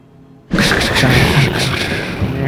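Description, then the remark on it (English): A thunder crackle sound effect: a sudden, loud crackle bursts in after a brief quiet moment, then rolls on as a sustained, rumbling roar with crackling texture through to the end. “You put a little, like, yes, thunder crackle.”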